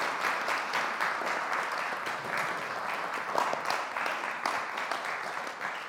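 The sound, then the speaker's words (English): A church audience applauds the church's trustees steadily, a dense wash of many hands clapping at an even loudness for several seconds with no voices over it. “Can I invite you to applaud the trustees who do a really good job of serving this church?”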